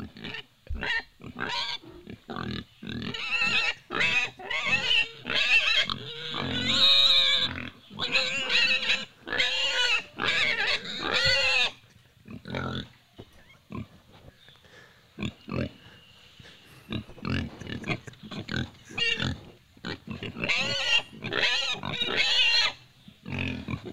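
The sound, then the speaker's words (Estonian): A pig, Arisiga Mustonen, one of Estonia's most famous pigs, grunts and oinks in a steady stream of short, loud snorts and squeals, easing briefly midway before the vocalizing picks up again. “Tänases saates läheb ETV loodusfotograafide ja ajakirjanike meeskond vaatama, kuidas elab Eesti üks kuulsamaid sigu, Arisiga Mustonen.”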